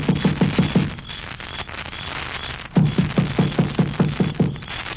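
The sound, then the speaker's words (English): Two quick bursts of hollow, thudding knocks on a door, about five raps, a brief pause, then about seven more, fairly loud over a faint background hiss. “You gonna knock? Of course.”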